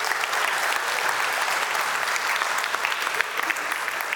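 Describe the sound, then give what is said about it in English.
A church audience claps for the Lord, steadily and loudly, many hands making a dense, continuous patter of applause that holds at a constant level with scattered sharper claps, with no voices rising above it. “Give the Lord a clap.”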